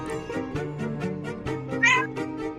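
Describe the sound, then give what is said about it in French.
A female cat lets out a single clear meow near the end, distinct, over a steady rhythmic background of low tones and regular beats, asking for cuddles. No one speaks. “Vous entendez mon chat qui miaule ou pas ?”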